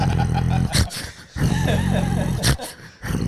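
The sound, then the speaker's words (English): A person imitates an angry growl: two loud, rough, sustained rumbling growls separated by short breathy gasps, with a final growl starting at the end. “Start growling?”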